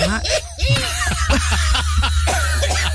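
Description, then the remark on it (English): A person coughs repeatedly in a series of short, harsh bursts, fairly loud, with a low steady hum running underneath. “I'm going to cough, actually.”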